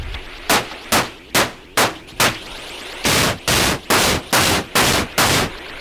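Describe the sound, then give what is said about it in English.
A couple of percussion pieces brought in on a shared clock, sharp, bright hits landing in a steady rhythm, first short snappy strikes, then a run of longer, sustained noisy bursts at the same pace. No voices. “All right, so we're also going to bring in a couple percussion pieces.”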